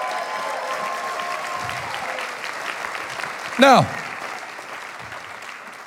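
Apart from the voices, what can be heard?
audience applause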